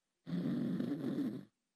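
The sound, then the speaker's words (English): One loud, rasping snore right up close to the microphone, a single rough drawn-out breath lasting just over a second, with silence before and after and no talking. “you're snoring on the mic.”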